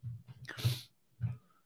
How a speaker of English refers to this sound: Excuse me, got a little sneeze there.